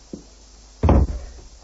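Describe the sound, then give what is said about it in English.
A faint tap, then one loud, heavy thud against a door, like a hard pounding knock, with a short dull rumble fading after it. No one speaks. “The door.”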